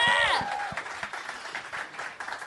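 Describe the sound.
An audience bursts into steady applause for a Raw Comedy winner, a dense patter of many hands clapping at moderate volume, with a brief voice and whoop at the very start before the clapping carries on alone.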